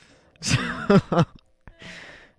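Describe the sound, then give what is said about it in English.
A person sneezes during a live show on Black Squirrel Radio: a drawn-out, voiced gasping intake of breath leads into two sharp, loud bursts, followed by a short click and a soft breathy exhale. “I'm going to sneeze.”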